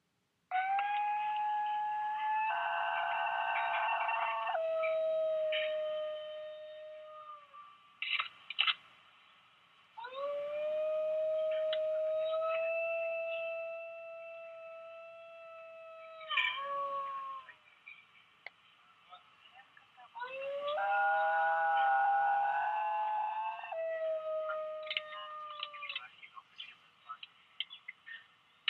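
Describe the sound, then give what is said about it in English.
Long, eerie howls from a singing dog with shifting, siren-like harmonic tones rise and fall in three drawn-out bouts separated by short pauses, loud with no talking. “I'm gonna play a little bit of this dog singing for you.”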